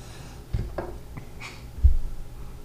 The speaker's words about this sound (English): He's sniffing it, folks.